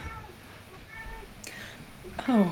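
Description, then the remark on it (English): A single cat meow rises near the end, fairly clear, over faint background murmur. “See, you pissed the cat off, man. He had to come in here and be like, who the fuck said what hey, about my man?”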